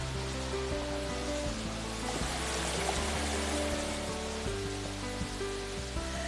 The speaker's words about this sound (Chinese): 呢个就系瀑布啊？ 梗系唔系啦，呢个瀑布底嚟嘅咋，仲要继续行啊